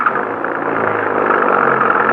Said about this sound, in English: Please, hurry. Get the car started. All right. All right, get inside. Maybe it'll go now. Let's hurry.